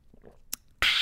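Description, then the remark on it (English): Someone sips hot bronchial tea from a gigantic WTF Marc Maron mug: faint mouth sounds and a quick wet click, then a loud, airy slurping hiss that runs to the end. No talking. “I know it's not strong and I'm trying to sound better, but let me take a sip of my tea that has the word bronchial in it.”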